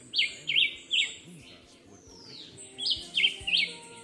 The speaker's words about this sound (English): Also known as the black-whiskered vireo, the Julián Chiví is a small songbird that lives in the forests around Adjuntas.